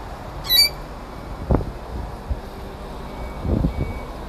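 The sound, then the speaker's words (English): A single short, shrill squawk from a pet bird on a balcony rings out near the start, followed by a few soft, low thumps and handling noises. No one speaks. “I'll let you be here, but you have to stop squawking.”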